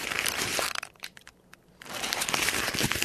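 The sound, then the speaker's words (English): Busy crinkling and rustling, like stiff plastic or fabric being crumpled in uneven bursts, pausing briefly in the middle before picking up again, imitating the footsteps of a raccoon walking along a fence. “That's him walking along the fence.”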